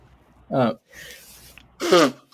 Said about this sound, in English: And you'll have to excuse me. I'm going to sneeze for a moment.